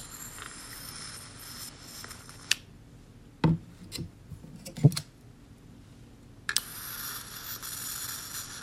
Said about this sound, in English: This is the sound of me lighting votives around my apartment.